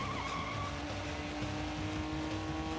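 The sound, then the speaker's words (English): A car engine roars as the vehicle speeds off, with tires screeching against the road. The noise stays loud and steady for a few seconds, and nobody is talking. “You're gonna run after a car?”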